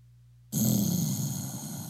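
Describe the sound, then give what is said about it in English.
A single low, strained grunt from a person stretching begins abruptly after a moment of near silence and holds for over a second, rough and breathy, with a steady loud level and no other voices. “Hey, that was me stretching.”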